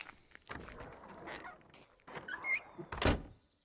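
A garden door is pushed closed with a scrape and a creaking swing, ending in a solid thump near the end, with no voices.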